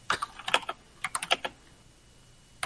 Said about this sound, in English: And now he's typing super loud. He's typing to us, too.